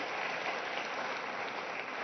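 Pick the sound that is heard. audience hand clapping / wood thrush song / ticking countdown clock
audience hand clapping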